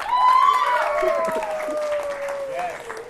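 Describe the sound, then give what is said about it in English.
An audience breaks into steady applause, the clapping running for several seconds, with a long whooping cheer gliding downward over it. “And if you guys could applaud or something, it'd be cool.”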